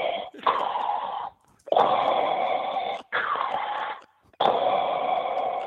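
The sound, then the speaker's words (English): Heavy, rasping breaths blown into the microphone, imitating the Darth Vader mask sound: four long, loud inhale and exhale bursts with brief pauses between them. “Right, I got the old Darth Vader mask sound going.”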